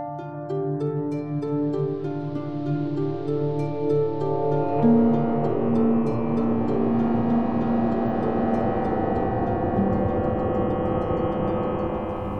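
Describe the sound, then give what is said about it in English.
A sci-fi tractor beam effect: a steady, loud harmonic drone that hums on without pause, shifting midway into a brighter, buzzing tone with a strong low note. No voices. “I haven't heard that sound in a while. A tractor beam.”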